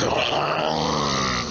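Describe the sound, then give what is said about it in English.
A person vocally imitates the disgusting roar of the Arcane Blood Wretch, a monster pelted by 1,000 arrows: a sustained, gurgling, growling grunt lasting over a second, loud and raspy throughout before trailing off slightly at the end. “you, instead of 9, deal 900 damage to the Arcane Blood Wretch, and it gets pelted by 1,000 arrows from 3 different mountains, and it roars with a disgusting sound of...”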